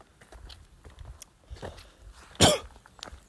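A single loud cough bursts out after a stretch of soft shuffling and small rustling noises, with a fainter throat sound following shortly after.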